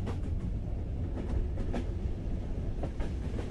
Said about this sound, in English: I'm gonna make this train stop. And you know what the beauty about Theater of the Mind is? All I have to do is imagine the train coming to a stop.